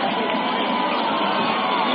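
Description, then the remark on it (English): A basketball crowd cheers for Jonesville against Laingsburg, rising to its feet as Jackson Pfeiffer plays late in a four-point game, in a loud, sustained roar, many voices blending into a dense, steady wall of noise with scattered shouts and no letup. “Jackson Pfeiffer has the crowd coming onto their feet for Jonesville. Laingsburg counters to our left. Listen to the bedlam.”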